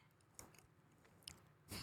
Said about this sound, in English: I wonder what it sounds like I'm chewing them. Can you hear this?